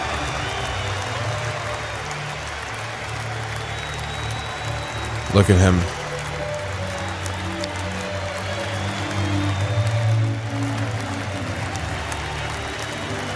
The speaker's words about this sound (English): Mike Piazza doesn't know how long. Look at all these players. Just like, how long do we have to clap? Do we have to clap the whole time he's driving around the field?